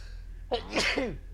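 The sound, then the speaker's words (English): A single sudden sneeze with a sharp breathy burst and a short voiced tail, heard clearly on its own against a quiet low hum. “Excuse me. Bless you.”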